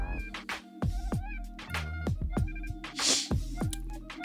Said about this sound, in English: There goes my cat.